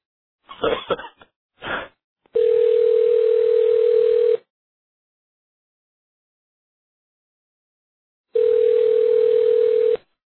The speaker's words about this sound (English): So anyway, with that out of the way, we'll make our phone call. So the next thing you should hear is the phone ringing.